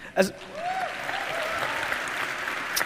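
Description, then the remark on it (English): An audience bursts into applause for themselves after a sharp opening sound, and steady, dense clapping carries on at an even level for a few seconds, with a brief vocal whoop early on. “You clapped for yourself.”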